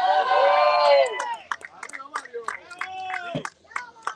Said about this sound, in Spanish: En presentar a nada más y nada menos que nuestro Mario Díaz Balart. Un aplauso.